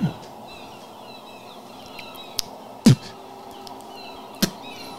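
Faint seagull cries drift through the background for several seconds, punctuated by a few sharp knocks or thuds. No one speaks.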